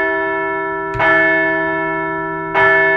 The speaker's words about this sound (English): So let's ring the bell for a small bit of revenge for that big fat L the Stros hung up on us last November.